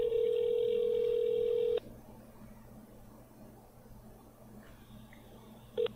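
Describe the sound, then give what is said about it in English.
A steady phone tone holds for nearly two seconds, then cuts off, leaving quiet line hiss before a short electronic beep near the end, like a call being dialed and connecting, as someone phones their dad. “All right, let's give him a call.”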